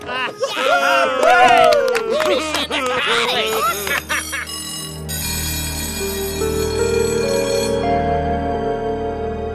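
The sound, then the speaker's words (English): Excited voices and chatter fill the first half, then a malfunctioning school bell starts ringing: a loud, continuous, buzzy electronic tone that holds steady without stopping until the end. “Due to the bell malfunction, I am announcing that class is dismissed for the day.”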